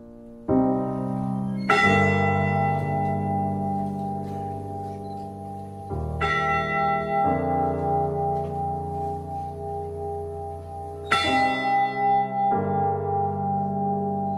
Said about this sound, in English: The day after the wreck, the Mariners' Church in Detroit rang its bell 29 times for each of the crewmen lost. And this ceremony continues in Michigan today with the ship's actual bell, raised in 1995 and kept at Whitefish Point.